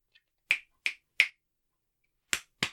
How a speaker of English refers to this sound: What did I do wrong? Two claps at the end. I did two claps. You did three.